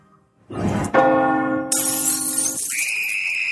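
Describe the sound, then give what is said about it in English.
A doorbell chimes loudly, its bright bell tones ringing out and sustaining for a couple of seconds before shifting to a higher, steady ringing note amid a hissy background. “The doorbell?”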